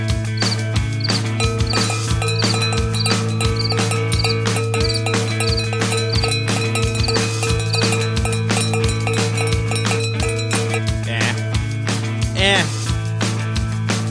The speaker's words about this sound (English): Ooh, those crickets are chirping. In line. Let's see if I can do a cricket and a cowbell.